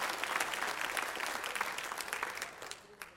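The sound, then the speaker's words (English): A church audience applauds the preaching steadily, a dense wash of many hands clapping that holds fairly even before thinning out toward the end, with a few scattered claps lingering. “Clap for that.”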